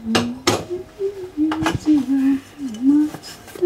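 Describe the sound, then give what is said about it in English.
Dishes and cutlery clink and clatter in a kitchen sink as a woman washes up after dinner, a few sharp knocks among softer rattles, while she hums a wavering tune, the Hong Kong protesters' anthem Glory to Hong Kong. “washes the dishes.”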